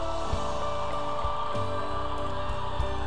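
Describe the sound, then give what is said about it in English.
An audience cheers on a young man doing a timed effort with a little weight on his back, a steady, dense roar of mixed voices holding a constant loudness throughout, with a few low thumps breaking through at irregular intervals. “Come on, cheer him on.”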